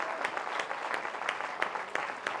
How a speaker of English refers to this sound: Come on, put your hands together, give the Lord a clap offering. Praise.